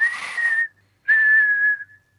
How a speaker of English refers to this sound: when I caught up with …, all I could hear was whistling